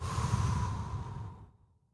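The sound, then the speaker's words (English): A single deep, breathy exhale out through the mouth after a breath in through the nose, during a breathing exercise, fairly loud, rushing out like a long sigh and tapering off into silence after about a second and a half. No talking. “We're going to go one final big breath. In through the nose, out through the mouth.”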